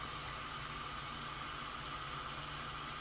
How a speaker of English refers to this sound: Oh my God, I love that water. I swear I should have been a water baby.